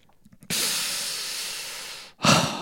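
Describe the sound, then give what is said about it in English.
A person demonstrates a habitual odd breathing sound they make when concentrating: a long, steady, drawn-out hiss of air lasting over a second and a half, then a brief pause and a shorter, sharper breath, fairly loud. “But when I'm like concentrating, I have this habit of doing this weird breathing thing.”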